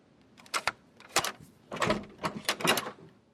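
The door of a small house swings open with a series of short creaking, rattling bursts spread over a few seconds, fairly loud, with no voices.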